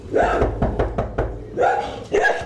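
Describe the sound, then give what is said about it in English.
Small dogs at the front doors of homes yap in a few sharp bursts, with a quick series of knocks on a door between the barks. “Colorful crotons and miniature statues guard the front doors, as do a lot of little dogs.”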